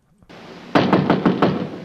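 Five firm knocks on an apartment door in a quick, even rhythm, fairly loud, heard over a steady background hiss with no one speaking.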